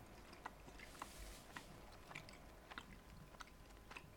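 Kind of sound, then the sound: food or drink, chewing crisps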